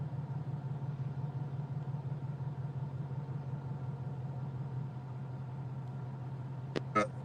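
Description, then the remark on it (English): Steady low rumble of road noise from inside a moving car, a constant droning hum that holds level throughout, with a brief knock or click near the end. “We're kind of in cars.”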